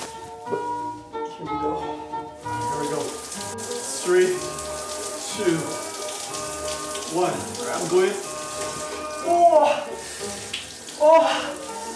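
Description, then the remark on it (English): Steady rush of cold shower water spraying continuously, with a person letting out several short gasps and strained vocal sounds over it. “I reach out for the shower handle like a drowning man grabbing a rope, shutting off the water.”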